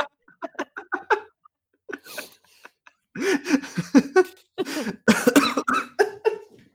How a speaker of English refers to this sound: Oh, sorry, coughing fit. That wasn't pleasant.